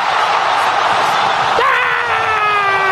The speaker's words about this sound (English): Ah! So many people cheering.